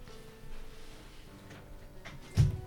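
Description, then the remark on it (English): A door opens, ending in a single dull thump and a short rattle near the end, after a stretch of quiet room sound with faint shuffling. “You can open the door.”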